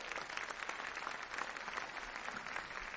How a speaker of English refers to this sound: So give them a big round of applause as they come.